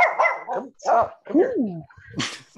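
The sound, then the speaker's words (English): A dog lets out a run of loud barks and yips, several short bursts with rising and falling whiny pitch, ending in a sharper, noisier yelp. “I thought about getting another dog, like to have her to have a buddy, but this dog's so used to having undivided attention.”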